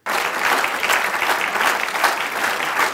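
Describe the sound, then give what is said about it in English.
An audience claps steadily for about three seconds as a vote for the speaker to move on to another topic next week, a dense, even wash of many hands with no voices, starting abruptly and holding a consistent loudness throughout. “Clap if you want me to move on to another topic for next week.”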